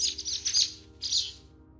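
A sparrow chirps in two quick bursts of rapid, high twittering separated by a brief pause, over a faint low background hum.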